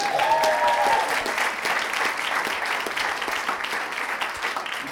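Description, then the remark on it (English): An audience claps for the speaker's girlfriend, a dense and fairly loud wash of hand claps that holds for the full few seconds, with a brief whistle or cheer rising above it at the start. “Y'all clap it up”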